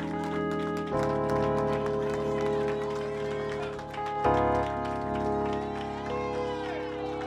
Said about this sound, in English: I need you to get up, act like you love God, give him a hand clap and praise. Clap for God. He's going. Clap for your process. Clap for your trials. Clap for your tribulations. Clap for your problems. Clap for your struggles. You gotta clap.